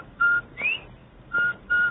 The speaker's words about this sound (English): Everybody loves the cheery whistle of a Bob White.